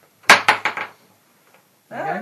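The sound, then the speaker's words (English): Dice rattle across a table in a quick run of four hard, clicking bounces that slow and settle, followed after a short pause by someone starting to speak. “See, that's crappy dice rolling for you.”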